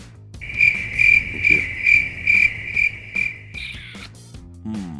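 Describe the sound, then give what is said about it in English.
A steady, shrill cricket chirping sound effect pulses in a regular rhythm for about four seconds, loud, over faint low background noise, then fades out. “Crickets, please. Immediately.”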